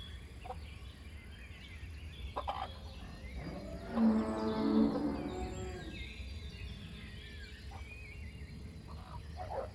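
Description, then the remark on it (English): A single drawn-out, loud moo from Molly the cow on a farm, rising out of steady outdoor farmyard ambience around the middle, with quiet background noise before and after. “Then I wave goodbye to Molly the cow.”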